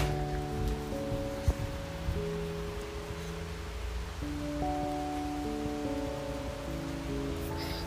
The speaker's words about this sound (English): And then rain sounds.